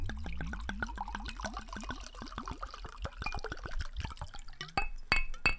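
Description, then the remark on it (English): A drink is poured into a glass with a steady glugging that rises in pitch as it fills, followed by a few bright glass clinks at the end. “Pouring it up and checking in, and we are at the check-in stop.”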